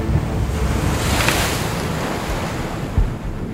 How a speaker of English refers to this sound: An enormous wave swept over the canoe. I was blinded by water. Half our supplies whooshed into the river.